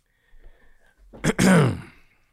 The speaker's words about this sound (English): I feel like after last week and everything that's been going on, I needed to clear my throat. Mm-hmm. So let me clear my throat here.